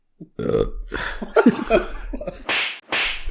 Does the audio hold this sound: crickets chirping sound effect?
no